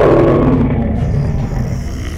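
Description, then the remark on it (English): A deep, loud, rumbling roar of a black winged lion, with a rider on its back, landing after dropping from the sky, filling about two seconds on its own and easing off slightly toward the end, with no talking. “The black lion dropped from the sky to land in the area between. Its wings spread and the rider atop its back snarled.”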